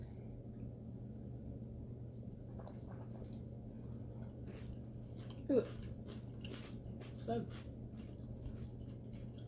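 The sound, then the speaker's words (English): Crunchy bites into pickles followed by wet, repeated chewing, with a few sharper crunches standing out over a low, steady background hum. “I can't promise if one of these pickles is a moonshine pickle or regular pickle, but one of y'all is going to get extra kick.”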